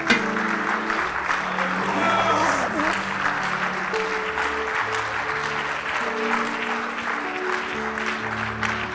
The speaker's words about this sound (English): Come on, give the Lord a hand clap of praise today. He's worth.